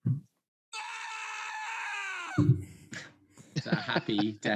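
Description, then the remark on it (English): A man lets out a loud, sustained happy scream for well over a second, its pitch sliding down at the end, before voices pick up and talk over each other. “That's a happy male scream.”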